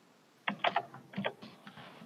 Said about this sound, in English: I can tell it's coming through your microphone because you can hear you typing.